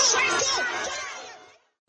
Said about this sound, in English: All right, there it is from the weekend, by the way. That was Minneapolis Mayor Jacob Fry was booed pretty much off stage.